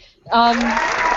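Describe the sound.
After a brief quiet moment, loud, dense hand clapping breaks out and keeps going steadily, with a voice briefly exclaiming over the start of it.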